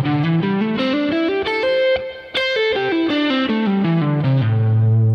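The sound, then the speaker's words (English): A distorted electric guitar plays a smooth legato scale run as a hammer-on and pull-off exercise. The notes step up and then descend, each picked first and then pulled off, flowing into the next with no speech, and end on a sustained low note. “And then you can just play a descending scale where you pick first and then you pull off.”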